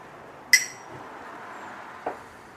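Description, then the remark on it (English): Glasses of rum clink together in a toast: one bright, ringing clink that fades quickly, followed by a softer second knock a moment later. “Jeff has already gotten to get the glasses. And so now we have some nice rum poured here. So we're gonna cheers here.”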